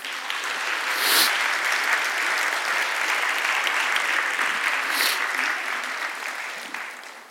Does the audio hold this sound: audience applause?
yes